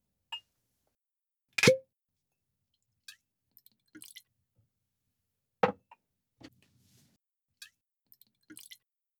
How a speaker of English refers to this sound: I'll pour the Indian single malt and you can pour the fusion.